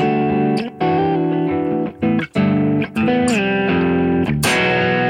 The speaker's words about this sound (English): But the in-between stuff is really important to me, you know, edge of breakup tones. To be able to get that from a dual humbucking guitar.